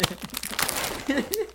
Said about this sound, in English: They have to know it's a cookie coming out of the box. No, since it's chewy, they can't like they can't hear the crunch.